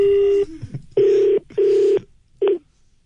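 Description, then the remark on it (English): A telephone rings with loud, buzzy electronic tones in short repeated bursts separated by brief gaps, with no one speaking. “It's my phone. I'll answer it if I want to.”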